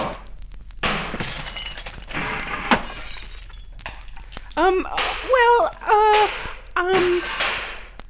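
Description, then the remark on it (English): Glass containers holding cures topple and shatter in a run of loud, crashing, scattered bursts over a few seconds, followed by a voice talking in short, pitched phrases. “I don't mean to interrupt, but I'm just wondering if you could not knock over my those are all the cures.”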